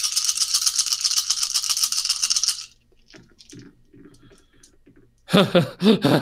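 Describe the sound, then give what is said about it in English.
Several dice, including six added for a nature of six, are rolled for a check needing three successes and come up with five. They clatter and rattle together in a dense, bright burst for a couple of seconds, then quiet murmuring talk and a loud voice reacting. “So you get to add six dice to that.”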